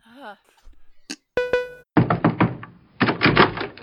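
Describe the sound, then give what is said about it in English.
A single bright doorbell chime rings out and fades, followed by two bursts of heavy, rapid knocking on a door, loud. A brief high vocal sound comes just before. “Well, I want you to ding dong.”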